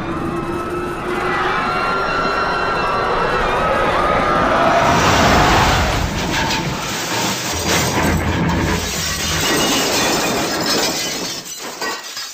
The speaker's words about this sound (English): Is everyone okay? No, we're not okay. The plane just crashed.